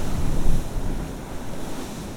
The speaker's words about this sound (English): Actually, the bigger ones don't seem to make a big noise, but wow, they're certainly impressive with the spray. The sets come through in threes, it seems. So three big waves in quick succession, churning up the sea.